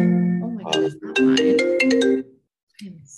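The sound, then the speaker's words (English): A phone's notification ringtone plays a short melodic jingle of bright tonal notes lasting a couple of seconds, followed by a brief pause and a faint voice. “All notifications.”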